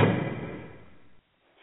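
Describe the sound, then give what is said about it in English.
A heavy prison cell door slams shut with one loud, booming impact whose echo rings out and fades over about a second, followed by near silence. “The doors are closing, and there's nobody that's probably out there to really help you,”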